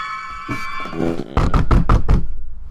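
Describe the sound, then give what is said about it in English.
A research assistant knocks on the door of a lab: a series of about five firm, closely spaced, loud knocks, following a faint sustained tonal hum that fades just before the knocking begins. “Just then, a research assistant knocks on the door to your lab.”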